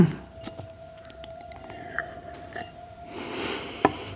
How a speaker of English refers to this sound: Relax, …, just relax. Have another sip of water.